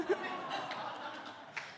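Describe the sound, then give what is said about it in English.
Steady applause from an audience, a dense wash of clapping that carries on for the whole moment, fairly soft, with a faint chuckle near the start. “sorry to interrupt my applause”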